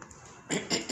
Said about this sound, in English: Let me clear my throat. All right, here we go.